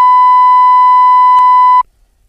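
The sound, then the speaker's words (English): A loud, steady censor bleep tone covering a spoken phone number holds for nearly two seconds with a brief click partway through, then cuts off abruptly into near silence. “You could beep that. I can beep the beep.”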